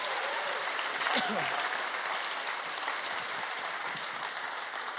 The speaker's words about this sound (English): So to celebrate, can we just give God a massive round of applause of all that's happening?